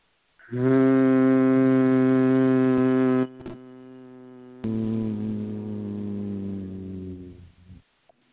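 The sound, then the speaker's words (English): A person hums through the nose in two long, steady, low tones, with a brief pause between; the second hum is slightly softer and fades out at the end. “Please join in stature, thanking Source, slow, silent, loving breath in 5, deeper, 3, deeper, 2, and this nasal hum.”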